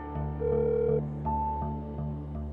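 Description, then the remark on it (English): A phone ringing out on an outgoing call, heard down the line as steady electronic tones with a few soft clicks at regular intervals, fairly quiet and with no one speaking. “I make the call, but the person who picks up the phone”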